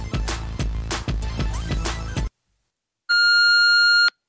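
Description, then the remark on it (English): A loud, steady electronic voicemail beep tone lasting about a second sounds alone after a short silence, following a brief burst of upbeat music that cuts off abruptly. “I'm not at my phone. Leave a message after the tone.”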